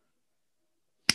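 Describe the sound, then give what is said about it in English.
A single sharp slap as a person slaps their own face, hitting more nose and lips than cheek. It lands abruptly after a stretch of silence, loud, with a quick bright smack and a short decay. “Oh, yo, why'd you slap yourself? That got more like, that got more nose and like lips than it did cheeks.”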